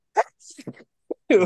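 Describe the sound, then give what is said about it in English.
A sneeze: a few short breathy, voiced bursts with brief gaps between them, then a louder, sharper final burst at the end. “I'm allergic to plugs. I cannot get through them without sneezing.”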